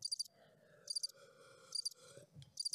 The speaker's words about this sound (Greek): Τα τζιτζίκια.